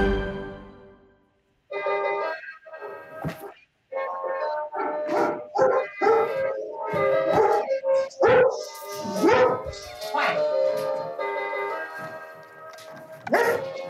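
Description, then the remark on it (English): A dog named Brisby barks again and again in quick, uneven bursts for about ten seconds, mixing sharp yips and higher whining barks at a fairly loud, steady level, with no one talking. “Brisby, dog for justice.”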